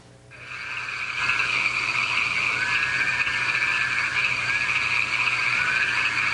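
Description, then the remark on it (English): A dense, continuous chorus of many frogs croaking and trilling together in a backyard in St. George, Utah, loud and steady, swelling in during the first second and holding without pause; no voices. “And I want to play you the sounds of the frogs in St. George, Utah.”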